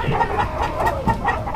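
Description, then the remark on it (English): A large flock of 1,000 free-range chickens clucks continuously as they are herded 20 miles to winter pasture at the Will Dairy fall roundup. Many overlapping birds at once create a dense, busy chorus with no pauses, steady in loudness. “No, it ain't easy to herd 1,000 free-range chickens 20 miles to winter pasture, but the folks at the Will Dairy think it's worth it.”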